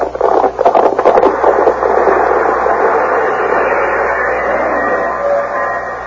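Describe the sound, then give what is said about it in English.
A train pulls into the railroad station at Cheyenne, Wyoming: a burst of metallic clanks and brake scraping at first, then a steady, loud hiss and rumble that slowly eases off. No one speaks. “As our old faithfuls carried us into Cheyenne, Marty met us at the railroad station.”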